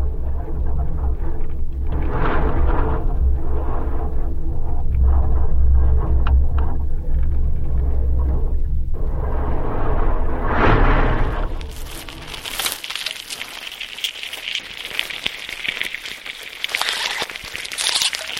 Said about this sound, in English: So this is a Choya cactus with a contact microphone attached to it on a windy day, and you're hearing the wind sort of whistling through the holes in this dead cactus.